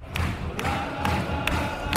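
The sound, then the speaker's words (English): A football crowd at the Watford v Arsenal game in Watford chants in unison, loud and rhythmic, with sharp thumps landing roughly every half second, like claps or stamps keeping the beat under the roar of voices. “And one of the interesting things about football, I suppose, is the shouting, the rhythmic shouting that the footballers do. They call it chanting.”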